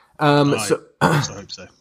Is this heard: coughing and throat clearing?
yes